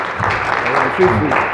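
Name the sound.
audience clapping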